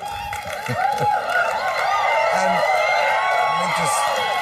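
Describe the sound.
A large studio audience at the HBO late-night show Real Time with Bill Maher applauds steadily, a dense wash of clapping punctuated by whoops and cheers, sustained and loud throughout, with a voice briefly speaking at the end.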